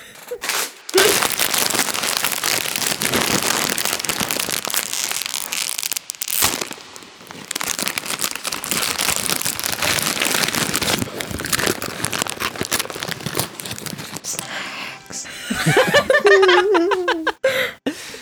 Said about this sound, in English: just rattled, opened and crunched and a packet of ready salted Walkers Baked.